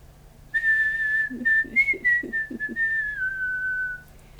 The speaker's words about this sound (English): Or you can try to whistle. You want me to try and whistle back what I think it is?